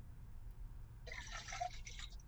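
drink being poured

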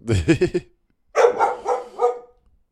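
dog barking

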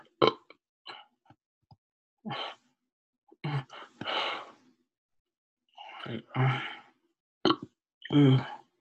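burp

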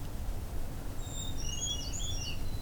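brown creeper song

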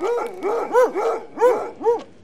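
hounds barking and whimpering

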